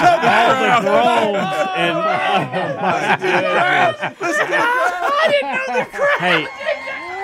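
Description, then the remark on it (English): A crowd groaning sound effect: a large crowd groans together, many overlapping voices rising and falling in long drawn-out moans. It's loud and continuous, with no clear speech. “Let's see what we got here. Oh. All the groans.”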